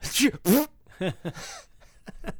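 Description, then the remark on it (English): A voice imitates a daughter's sneeze followed by a fart: two loud, breathy bursts, then several shorter sputtering puffs that fade out, with no other talking. “Every time she sneezes, she farts. So I just say this.”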